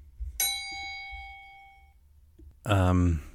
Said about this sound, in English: Anyways, let's ding the bell. Let's ding the freaking bell.